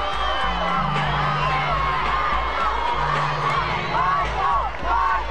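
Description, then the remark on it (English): A large crowd of fans cheers and shouts continuously as an entertainer dances atop a vehicle, with excited whoops and high voices rising over a steady pulsing beat of music underneath, all loud and dense throughout. “The music under the fans' cheering was actually the song”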